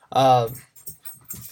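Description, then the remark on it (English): A dog running around: a short, loud whining yelp, then softer scuffling, jingling collar tags and faint panting over the next second. “My dog is running rampant right now.”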